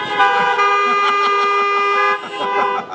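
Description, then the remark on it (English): Several car horns honk together in a loud, sustained chorus of overlapping tones, with a brief dip before more honking continues, as a crowd of people gathered in their cars honk to show they are glad to be there. “If you're glad to be here, honk your horn.”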